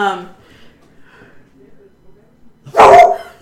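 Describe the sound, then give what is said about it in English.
A single loud dog bark bursts out near the end, following a brief fragment of a voice at the start and a quiet stretch in between; one of two dogs in the room during a recording, barking at someone outside. “Side note, we record around two dogs.”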